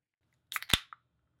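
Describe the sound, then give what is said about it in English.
A can of Liquid Death Mountain Water being cracked open: a few quick metallic clicks from the tab, then one sharp pop with a brief hiss and a small final tick, all within half a second, no talking. “For those of you just listening via audio, I am opening a can of Liquid Death Mountain Water.”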